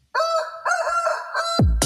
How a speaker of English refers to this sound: But instead, you know, the intro is starting with a coo-coo-coo thing, right? The chicken.